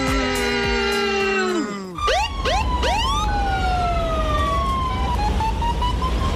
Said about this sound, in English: Listen up and hear the sirens go knee na knee.